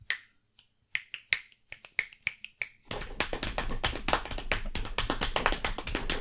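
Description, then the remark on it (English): Sharp, separate taps or snaps arrive in an uneven rhythm, then suddenly thicken into a fast, continuous patter that imitates heavy rain drumming on a ceiling. No one speaks. “All of a sudden, it's like a fucking rainstorm on top of the ceiling, right?”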